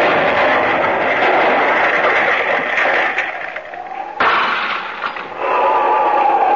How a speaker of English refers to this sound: There. There is the explosion and broke the window of the cottage.